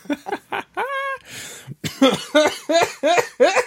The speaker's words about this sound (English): Okay, that was my way of coughing much more attractively than just hacking up a lung. please don't worry about me.